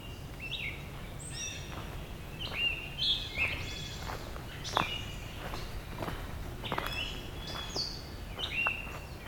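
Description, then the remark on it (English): A gray catbird sings varied, burry phrases that mimic a scarlet tanager, repeating steadily from low near the ground, with scattered taps of rain dripping off the trees and faint background rustle beneath. “Catbird's doing some good scarlet tanager mimicry closer to the ground”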